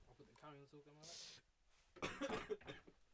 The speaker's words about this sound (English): I'm not going to cough into the mic.